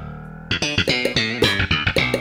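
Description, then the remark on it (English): An echo sound effect: a bright, harmonically rich tone that repeats in quick, decaying bursts, each fading into the next for about two seconds, with no talking. “Is there an echo in here?”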